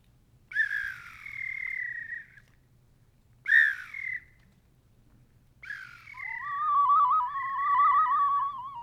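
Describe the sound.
Bird calls played on a small whistle carved from cedar wood, about the size of a large yellow tomato: two short, bright chirping calls, then a longer warbling trill, clear over a faint low hum, with no talking.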